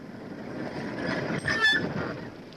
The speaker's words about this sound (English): Here, here. There's a car coming.